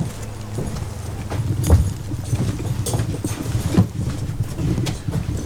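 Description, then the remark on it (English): Horse hooves clip-clop at an unhurried, irregular pace on a hard barn floor as horses, each weighing a little over a ton, are saddled up in a barn built in 1880. A few sharp knocks stand out over a low, steady rumble of background noise. “We're going to saddle up the horses in the barn.”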